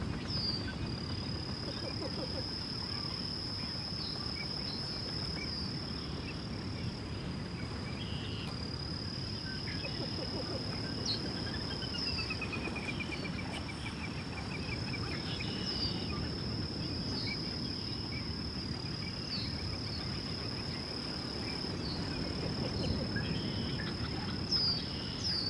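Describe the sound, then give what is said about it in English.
Faint chirps and whistling calls of many birds in the distance, including red-winged blackbirds, boat-tailed grackles, several species of ducks and a few shorebirds, scattered over a steady high-pitched insect-like drone and a low rumbling wash of background noise, with no talking. “Listen to all the birds in the distance.”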